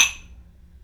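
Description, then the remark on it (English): A single bright clink of wine glasses touching in a toast, a quick high ring that fades within a fraction of a second over a low, quiet hum. “Cheers.”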